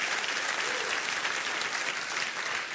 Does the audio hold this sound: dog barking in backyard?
no